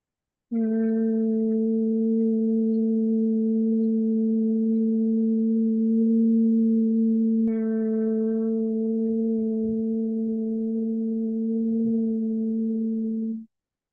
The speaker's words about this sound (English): And when you're ready, we're going to take a deep breath in through the nose, and as you exhale, creating a hum.